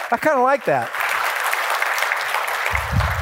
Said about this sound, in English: Praise God. Should I ask for another applause for God? Okay.